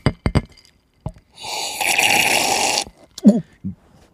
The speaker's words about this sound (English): Great slurping sound. Excellent.